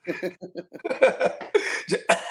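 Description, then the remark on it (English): A person imitates a cat hacking up hairballs, joking about Tyreek as a cat: a quick run of rough, voiced hacks and gags, fairly loud, building into harsher retching bursts near the end. “Coughs up a couple Tyreek hairballs, and we're in this thing.”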